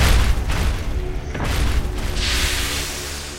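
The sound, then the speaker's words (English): A huge mechanical stomping machine, a robotic figure called Peacekeeper 20590 in Zeta City, stomps toward the listener during a fight, heavy booming thuds over a dense, grinding low rumble, with one sharp clank partway through and the din swelling slightly louder. “everything goes silent and the fighting stops for a second as a huge mechanical stomping machine can be heard approaching your way.”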